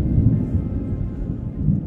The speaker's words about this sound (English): And as the thunder is erupting all around you, you see strikes of lightning hitting the ground near the stone circles.